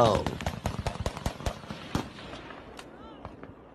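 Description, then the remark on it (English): A rapid burst of sharp, high-powered gunshots cracks out in quick, irregular succession as people shoot at something in the sky, echoing outdoors, then thins to a few scattered pops as the reverberation fades; a voice is briefly audible at the start. “They definitely sound like high-powered gunshots, right?”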